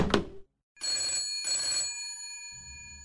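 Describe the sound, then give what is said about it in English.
A brief clattering knock gives way to a telephone bell ringing loud in two quick bursts, its metallic tone lingering afterward, with a low rumble at the end. “You can stick your double glazing right up your ass, and if you phone me again...”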